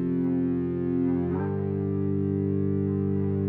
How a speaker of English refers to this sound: Those guitar Ebo drones sound something like a synthesizer, but I went ahead and added another part that actually is a synthesizer on top of the Ebo part for additional texture.